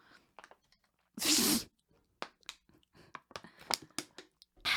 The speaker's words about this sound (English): A little ASMR there with that water bottle, honey.